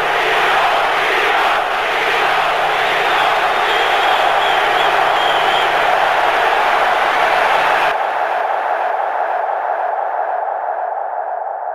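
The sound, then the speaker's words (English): A loud arena crowd of hockey fans chants the player's name "Geno, Geno" in unison, a steady roar of many voices with a sung, repeating pitch, continuing throughout before the sound turns muffled and thinner near the end. “The fans are chanting, Geno, Geno.”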